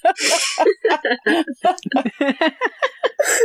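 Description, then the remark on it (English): A woman's voice imitates snoring: a breathy, hissing rush at the start, then a rapid string of short voiced snorts and sputters, ending with another airy hiss. “snore is really funny. Sounds like she's saying, kiss, kiss, kiss.”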